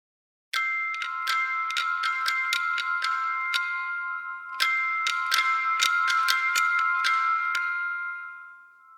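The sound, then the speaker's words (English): A bright, bell-like alarm melody recorded with live acoustic instruments: a quick run of struck, ringing notes, then a second matching phrase, with the tones sustaining and slowly fading at the end. “And again, because it's recorded with live instruments and it's an acoustic sound source, I think it brings a slightly different quality to the approach of having an alarm.”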